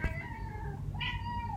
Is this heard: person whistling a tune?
no